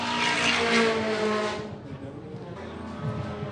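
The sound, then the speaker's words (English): A high-revving, bike-engined Starlet race car, a hill climb build, screams past. Its sharp motorcycle-style whine is loud at first and then fades as it pulls away, with faint voices underneath. “I can listen to that bike motor Starlet every time around.”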